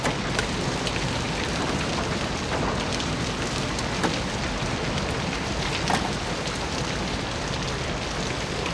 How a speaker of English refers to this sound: I don't remember exactly when it happens, but that beginning of the film, we open and all we hear is rain.